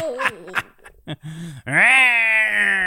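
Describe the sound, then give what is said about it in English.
A person imitates a falling cat's yowl: a few short strained vocal bursts, then a loud, drawn-out meowing wail that rises and holds steady to the end. “Do a voice like a falling cat. Meow.”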